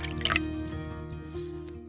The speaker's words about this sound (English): I'll pour you a drink and let's get started.